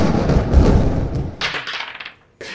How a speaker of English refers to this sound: And a burst of thunder in a wave kind of thumps you in the chest as it emanates from her.